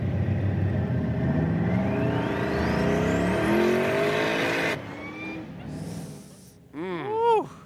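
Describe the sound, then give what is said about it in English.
A car engine roars and climbs in pitch as it accelerates hard, loud, then drops off before a sharp final burst of revving with wavering, rising tones. “Dude, how ill would it be if that was a cop car?”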